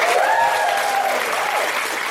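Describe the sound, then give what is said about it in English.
A dense, sustained burst of audience applause for the staff at a live Shedinburgh event at the Soho Theatre, loud and steady throughout, with many hands clapping at once and a faint cheer or whoop rising briefly above it. “A huge round of applause for all of this incredible staff who's doing this round-the-clock stuff here for Shedinburgh at the Soho Theatre.”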